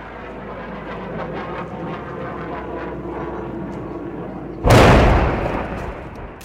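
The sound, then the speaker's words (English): Mortar and artillery fire as Kurdish fighters return mortar fire toward ISIS positions on Mishtanor Hill: a steady rumbling background with faint muffled thumps, then one loud, sharp boom that crackles and slowly fades over about two seconds. “And that sounds like they're returning fire.”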